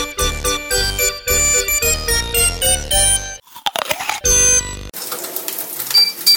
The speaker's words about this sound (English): That's not only the OptiGrill beep to say that food is cooking, it's also just a little something to get your attention